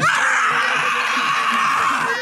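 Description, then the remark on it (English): A woman screams at the top of her lungs at a protest in San Francisco, right in a drag queen's face, one long, shrill, sustained shriek that stays loud for about two seconds without a break. “If you're a conservative with any social media, you've seen the video of this woman screaming at the top of her lungs right in my drag contoured face with 3-inch eyelashes.”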